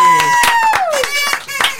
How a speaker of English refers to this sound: So I think Mr. North deserves a round of applause